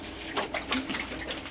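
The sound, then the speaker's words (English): Splashing and bubbling water from a korora little penguin bathing, with a few soft, short bird calls mixed in over steady background noise. “a korora little penguin enjoying some bath time.”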